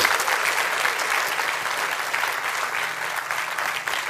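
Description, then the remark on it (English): A church audience breaks into steady, sustained applause, a dense wash of many hands clapping at an even level throughout, with no voices standing out, clapping in praise to the Lord for those who came to faith that morning. “Come on, give the Lord a hand clap of praise for those that come to faith this morning.”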